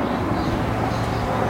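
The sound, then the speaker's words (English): A really big tandem-rotor helicopter, with rotors at the front and back, passes overhead, a loud, steady low-pitched rumble and drone that holds constant throughout, with no voices. “Whoa, that's a really big helicopter going by with like the propeller in the front and the back.”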